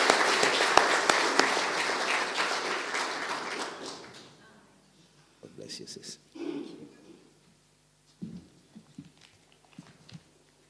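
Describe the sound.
An audience breaks into dense, steady clapping for about four seconds, then the applause tapers off and fades away, leaving a quieter stretch where a voice speaks in short bursts.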